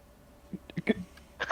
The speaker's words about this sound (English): I can burp on command.